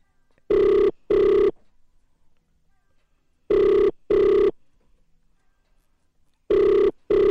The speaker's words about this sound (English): Okay. Oh, it's ringing. It's ringing. Let's see if they'll pick up.